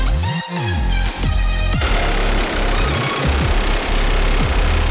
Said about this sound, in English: They're gonna run you through the M134 minigun. All right. Ride the lightning for 6 to 8 seconds, all right? Okay.